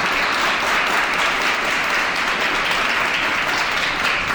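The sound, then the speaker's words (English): An audience at the Pendennis Building, during a show broadcast live on 1440 AM, breaks into a sustained round of applause to welcome a guest, a dense, steady wash of many hands clapping at an even loudness throughout, with no voices standing out. “Huge round of applause, guys.”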